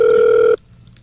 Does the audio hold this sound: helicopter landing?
no